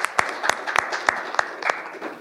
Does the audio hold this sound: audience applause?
yes